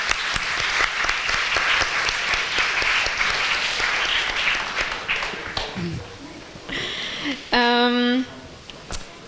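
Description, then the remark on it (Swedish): An audience applauds with dense, sustained clapping that fades after several seconds, followed by a brief, bright, buzzy electronic tone. “Jag tycker nästan nu kan få en applåd till med mig på grunden här faktiskt.”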